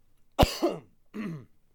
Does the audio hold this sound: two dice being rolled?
no